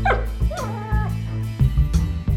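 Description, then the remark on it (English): A dog whimpers with a high, wavering whine, broken by several sharp barks and yips over a steady low hum, with no one speaking. “I might go around and put another round in the dogs, just to make sure.”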